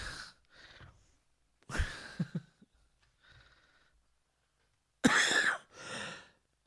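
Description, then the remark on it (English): Several harsh coughs from someone who caught a cough from children, in separate bursts with pauses between them, mixed with breathy exhalations; no one speaks. “Goddamn kids gave me a cough.”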